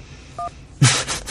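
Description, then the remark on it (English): A single short phone keypad tone as the 1 key is pressed to accept an incoming phone call, clear, followed moments later by a loud burst of crackly line noise. “To accept, press 1.”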